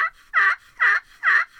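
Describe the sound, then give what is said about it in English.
A turkey call sounds a series of sharp yelps, about four evenly spaced notes in a steady rhythm, loud with no talking. “So I just was going to do a turkey call, and you did too fast, too slow.”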